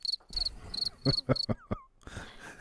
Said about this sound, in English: your crickets are definitely more subtle and cricket-like. Mine is if crickets were using a megaphone. Yeah. Your cricket's Hulk Hogan, my cricket's Jimmy Hart.